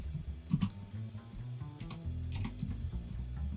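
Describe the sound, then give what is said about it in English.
Rapid typing on a computer keyboard, a steady patter of crisp key clicks with a few sharper strikes, continuing for about 12 seconds with no voices. “Now 12 seconds of typing sounds.”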